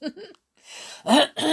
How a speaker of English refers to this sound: Clear my throat in anticipation of reading chapter 15.